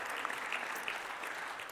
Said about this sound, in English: yes, if one claps, we all have to.